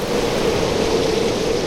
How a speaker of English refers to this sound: Only Gus's house drowning in the storm surge.